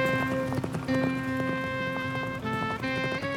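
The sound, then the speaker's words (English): Horses' hooves clip-clop in a steady walking rhythm as riders with loaded packs ride back down a mountain, moderately loud, blended with sustained musical tones playing underneath. “And we load up our packs and ride our horses back down the mountain, back toward home.”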